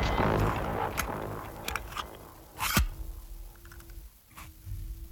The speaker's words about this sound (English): Mossberg is a rifle manufacturer, and so you hear that gun sound.